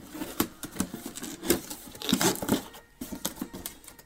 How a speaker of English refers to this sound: So I'm opening it up, and everything's still in its cardboard boxes and stuff, but this big cardboard box here is actually... this big cardboard box here, where's the front? Top. There it is. Gotta open it up.